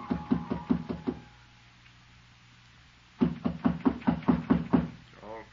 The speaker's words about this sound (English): Footsteps again. And this time they stopped outside my door.